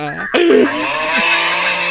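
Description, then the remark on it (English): A person snoring: a low, buzzing drone that breaks into a louder, raspy, breathy rattle, continuing steadily for about two seconds. “That's somebody snoring, dog.”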